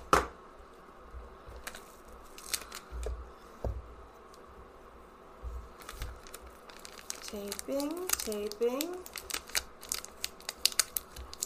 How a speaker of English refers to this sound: Taping.